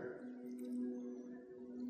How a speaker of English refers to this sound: So I'm just going to take some water, and I'm going to pour it on the tree, all around it here.